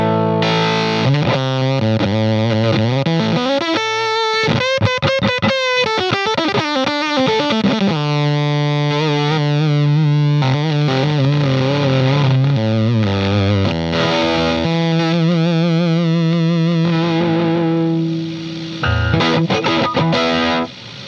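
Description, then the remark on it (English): A guitar played through a Sun Face fuzz pedal, thick and saturated with buzzing harmonics, sliding and bending between notes in loud sustained phrases, with a brief choppy burst of fast strums partway through. “Fuzz.”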